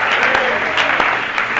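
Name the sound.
audience clapping hands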